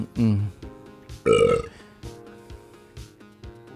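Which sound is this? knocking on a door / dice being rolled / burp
burp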